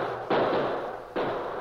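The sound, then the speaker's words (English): Two distant Indian carbine shots ring out far ahead, about a second apart, each a sharp report followed by a long, rumbling echo that lingers before fading. No voices are heard. “Captain Walker identified the crack of Indian carbines.”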